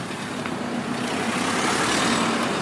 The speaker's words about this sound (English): There's a car there.